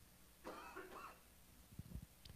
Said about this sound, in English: Got a cough.